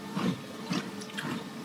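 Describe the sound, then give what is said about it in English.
Someone drinks water in a few quick swallows, three soft gulping sounds in a steady rhythm with faint wet clicks between them, no talking. “Gonna have some water here.”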